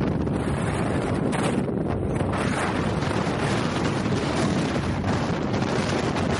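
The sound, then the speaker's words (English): Strong, freezing, gusting wind on a hillside, recorded while hiking uphill, roars and buffets the microphone in a dense, continuous rush of low rumbling noise, swelling slightly in gusts, with no voices or other sounds. “I should probably like cut in like some of the audio that I have just from the sound of the wind.”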